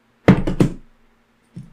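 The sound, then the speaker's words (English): Metal dice are thrown onto a table with a quick burst of three sharp, clattering knocks, followed a moment later by one softer, duller tap as they settle. “No, you guys are using metal fucking dice.”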